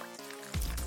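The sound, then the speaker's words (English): Champagne trickles with a faint hollow tone as it is poured, then splashes loudly onto a person's stomach in a sudden burst of wet spattering and dripping. “And you can pour it on my stomach.”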